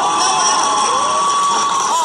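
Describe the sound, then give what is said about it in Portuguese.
A large crowd cheers and claps loudly and continuously, a dense wall of excited voices with a few shrill, high-pitched shouts rising above it. “Ela não entendeu porra nenhuma que ela falou e tá aplaudindo.”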